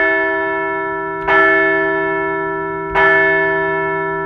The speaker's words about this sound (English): So let's ring the bell for a second straight series win.